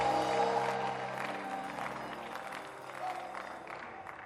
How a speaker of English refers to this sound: Come on, somebody clap your hands and scream it like your voice is yours.